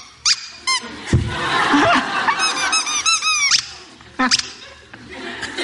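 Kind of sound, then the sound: household object, squeaky toy being squeezed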